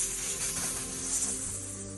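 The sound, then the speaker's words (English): A voice makes a soft, steady snake-like hiss, one continuous breathy sound held for about two seconds at an even, moderate level. “And when she hears you coming, the snakes on her hair see you coming first, and they just let out a gentle sort of like.”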